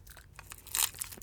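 A Hi-Chew candy wrapper crinkles and tears open, with short papery crackles building to one brighter ripping burst near the middle, fairly quiet overall and with no talking.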